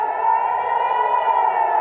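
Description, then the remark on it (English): A loud, steady red alert rocket warning siren in southern Israel, sounding at 6:30 in the morning at the Nova Music Festival and meaning rockets are being fired from Gaza, wails continuously, a sustained high tone with layered harmonics and no voices, filling the whole short stretch. “red alert sirens began to sound in southern Israel.”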